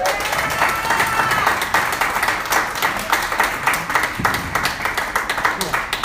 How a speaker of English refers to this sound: Ladies and gentlemen, please, a big hand of applause